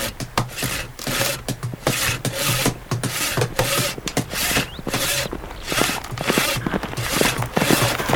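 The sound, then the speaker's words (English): Steady, rhythmic rasping strokes of a saw cutting through wood, fairly loud, with sharper knocks mixed in like hammering on lumber. No voices are heard. “Let's commence to sawing and hammering and making a general-like ruckus.”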